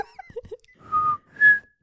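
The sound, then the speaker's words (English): A person whistles in imitation of a creature's three-pitch call that goes low, high, low: a few soft chirps, then a sustained lower note followed by a louder, higher one, clear with no talking. “They omit a 3-pitch whistle, which goes low, high, low.”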